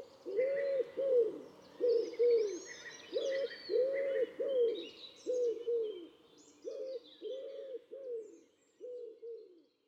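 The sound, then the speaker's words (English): A pigeon coos in a steady, repeating phrase, a soft, low, hooting rhythm that rolls on for several bars, with faint higher birdsong chattering in the background. “And it's like people say, my toe is bleeding, but I've often been accused of thinking that it sings, I know I'm boring, I know I'm boring.”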